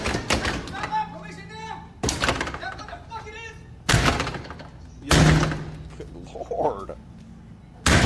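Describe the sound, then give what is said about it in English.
A pot-bellied man repeatedly slams his gut against a door, trying to break it open: about five loud, heavy thuds roughly two seconds apart, with a voice talking between the impacts. “He's about to break the door. I don't know if you hear that.”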